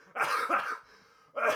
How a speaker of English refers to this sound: You made me cough laugh so much.